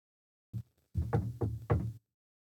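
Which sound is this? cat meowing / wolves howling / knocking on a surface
knocking on a surface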